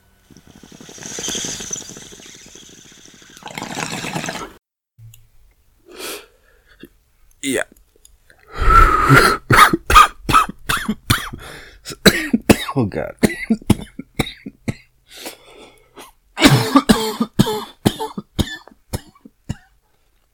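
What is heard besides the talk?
coughing fit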